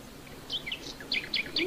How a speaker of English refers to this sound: That's a nightingale. Oh, isn't it lovely?